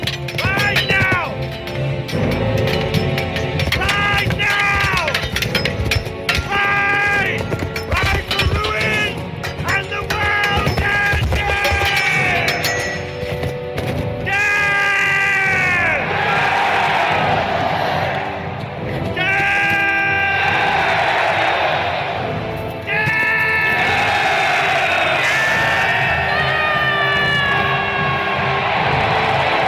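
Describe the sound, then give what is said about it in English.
A huge army of riders screams "death" together in a loud, sustained war cry, the shouting rising in repeated waves over a dense, booming backdrop that never lets up. “It gets me pretty jacked hearing everybody scream death.”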